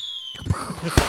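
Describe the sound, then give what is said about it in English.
A thin, high whistle gives way to two sharp, booming bursts about half a second apart, a 4th of July fireworks sound effect popping overhead, loud with no talking. “Yes, 4th of July fireworks effect right here.”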